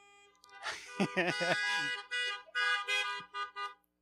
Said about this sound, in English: Another honking of horns if that might be you.